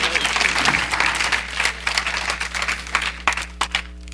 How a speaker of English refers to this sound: Somebody ought to give the Lord a hand clap of praise for that.